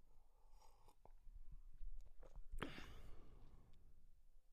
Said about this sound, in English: Let me take a sip and I'll think about it.